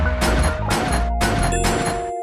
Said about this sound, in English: Gunshots, bitch.